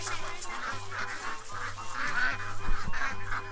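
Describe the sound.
A voice imitates a duck, making a steady run of loud, nasal quacks for several seconds, with a low hum underneath.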